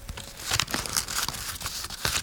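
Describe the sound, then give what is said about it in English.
A piece of paper being crumpled, a steady run of crisp, crackling crinkles with a few sharper bursts, lasting a couple of seconds with no talking. “Give me that piece of paper.”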